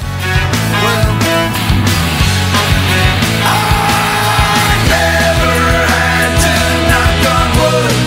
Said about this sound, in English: So that scream is sort of the, you know, the trick that they did twice, you know, that guitar noise and my scream are the same sort of, here comes the chorus.